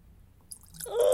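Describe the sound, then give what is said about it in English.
Liquid being poured in a pour test: after a short quiet moment, a soft splashy trickle swells quickly into a fuller, louder gurgling stream by the end. No one speaks. “So here's a pour test.”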